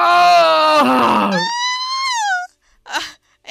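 A man's voice lets out a loud, raw, high-pitched scream that climbs and holds for about two seconds in imitation of a primal rock yell, followed by a short breathy gasp.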